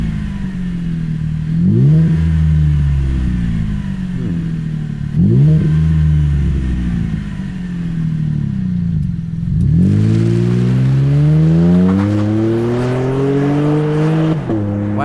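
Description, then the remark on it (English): A deep, throaty Borla S-Type T304 stainless steel exhaust on a truck revs up and down several times, each blip rising sharply then settling into a rumbling idle, loud with no talking. “Listen to the S-Type. Oh, S-Type exhaust from Borla. T304 stainless steel.”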